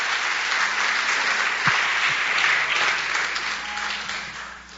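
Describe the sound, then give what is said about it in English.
An audience claps their hands for two brothers after their testimony, in sustained, dense applause, a steady wash of many overlapping claps that holds strong and then tapers slightly toward the end. “Would you clap your hands for these brothers one more time?”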